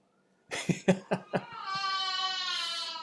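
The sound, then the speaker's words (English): A young boy having a meltdown in the background cries out in several short, choppy sobs, then breaks into a long, sustained high-pitched wail that holds steady to the end. “do you guys hear this? Am I screaming in my background too?”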